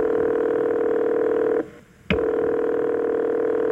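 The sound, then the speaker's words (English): Telephone dialing a 911 emergency call on a Tuesday afternoon in August 1995 in Springfield, Illinois: a steady, buzzy tone hums, cuts out for about half a second, then a sharp click sounds and the tone resumes. No one speaks. “It was a Tuesday afternoon when the following 911 call was made.”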